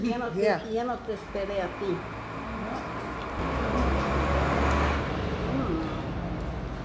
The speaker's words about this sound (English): Yeah. And also lots of local buses come by here.